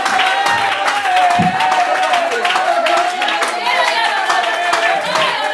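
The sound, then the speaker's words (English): A crowd claps steadily and densely for several seconds, the many hands blending into a continuous patter, with raised voices and cheering mixed in throughout. “Somebody ought to clap your hands and love them together.”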